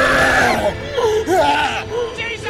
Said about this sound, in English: screams, and the bathroom door opens.